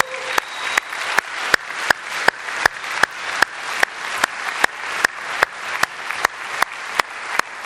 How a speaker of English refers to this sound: Actually, let's give the Lord a clap. It's worth a clap.